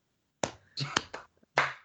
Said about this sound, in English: There's just the saddest clap in the front row for that fucking fire up.